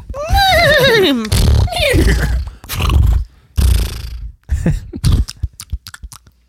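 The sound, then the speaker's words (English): A horse eating hay: a loud, wavering neigh-like cry, then rough breathy snorts and crunchy chewing bursts that grow shorter and more clipped toward the end, with no talking. “That was the horse. It was eating.”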